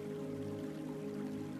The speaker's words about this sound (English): In the distance, the sound of the waterfall is becoming more and more faint.